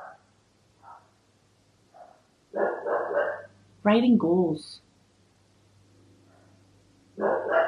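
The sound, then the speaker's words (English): A bulldog lets out a loud bark, a quick double burst, in a short gap between stretches of a person talking. “As I hear my bulldog bark, as I'm trying to do a podcast.”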